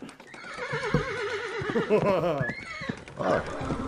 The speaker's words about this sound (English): Hey Jeeves, the horse and chariot, please.